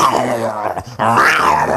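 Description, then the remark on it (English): A human voice imitates a lion's roar as the little lion in a children's song about animals, in two sustained, rumbling, strained bursts separated by a brief pause, the second rising and swelling louder before trailing off. “The little lion went.”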